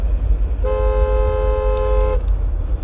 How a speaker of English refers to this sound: Sorry, I honked at this guy because he was in the middle of the road.